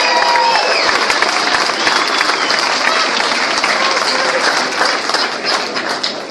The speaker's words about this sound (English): I'd like to, if you wouldn't mind tonight, if you can just give the Punch team a hand clap. You worked so hard.